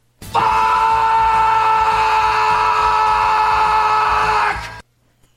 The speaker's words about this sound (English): Like, go fuck yourselves, or I just sometimes would like to scream.